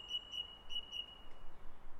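A song thrush sings a quick run of four clear, repeated whistled notes at an even rhythm, fairly faint over a low outdoor hiss.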